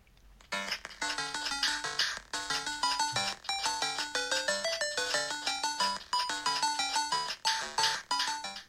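A bright, bouncy chiptune-style melody from the video game Bagman plays through a small phone speaker held near another speaker for a music quiz, with quick stepped notes in a steady rhythm, tinny, with no one talking over it.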